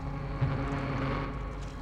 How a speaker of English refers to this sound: as he cranked the outboard motor.